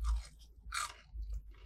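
Crunchy chewing of Popeyes chicken nuggets: a few bursts of crisp, crackling bites with low thumping jaw sounds, repeated in an uneven rhythm with short pauses, no talking.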